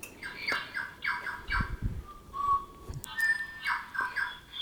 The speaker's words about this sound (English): That's my bird clock in the background. Little Tui.